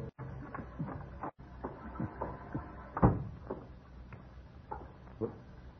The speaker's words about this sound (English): The headlights flashed through the windows as the car turned into the drive, and a moment later I heard his key in the lock.